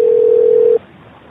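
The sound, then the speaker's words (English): A steady, single-pitched telephone tone hums loudly for under a second as a phone call is being placed, then cuts off abruptly, leaving only faint background hiss. No one speaks. “Calling your mother. Okay, call.”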